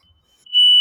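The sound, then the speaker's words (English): A shrill, piercing smoke alarm tone in a home, set off by someone, rises quickly and holds steady at full loudness, sounding alone with no voices. “Someone has set off the fire alarm in my home.”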